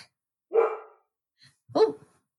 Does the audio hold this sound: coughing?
no